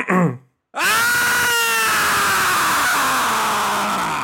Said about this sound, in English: You need me to hit this button and then just scream. Hit it, and then it's going to ask you. Follow the instructions. Follow the instructions. Get ready to scream, okay?